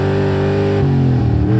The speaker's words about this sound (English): Gravel spat out from under our tires when he finally got us straight. There was a squeal of burning rubber, and then we were off, barreling down the narrow, winding road at breakneck speed.